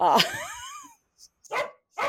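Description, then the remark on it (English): A puppy barks over a toy while no one plays with her: a long, whiny bark that slides down in pitch, then two shorter, sharp barks after brief pauses, with no one talking. “If we want to keep our dog, in the game, apparently somebody has a toy that somebody else wants and no one's playing with her.”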